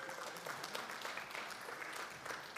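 Steady applause from a crowd as two people come up to the front for an arm-wrestling contest: dense continuous clapping with scattered sharp hand claps, holding an even, moderate loudness throughout without voices standing out.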